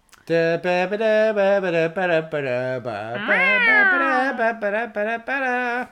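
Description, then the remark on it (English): A voice imitates a cat, giving a run of drawn-out, sing-song meows with a long rising-and-falling wail near the middle, fairly loud throughout. “Meow.”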